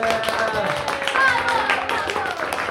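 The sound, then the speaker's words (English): A small group claps steadily for a few seconds, applauding themselves, the dense patter of hands mixed with a few voices calling out and chattering. “Round of applause for yourselves, please.”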